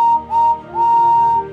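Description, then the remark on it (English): A steam locomotive whistle of Henry the green tender engine, the number 3 engine on the Fat Controller's railway, sounds three loud, clear blasts, two short toots followed by one long held note, with no voices. “Henry is the number 3 engine on the Fat Controller's railway and has a whistle that sounds like this.”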